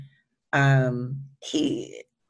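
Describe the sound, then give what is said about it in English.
A single loud sneeze: a drawn-out voiced intake that breaks into a sharp, breathy burst, with no talking around it. “Bless you.”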